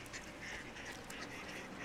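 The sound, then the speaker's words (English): Two hen wood ducks call near a yard in a steady, overlapping chatter of short quacks and squeals against a faint outdoor background, with no one speaking. “There's two hen wood ducks.”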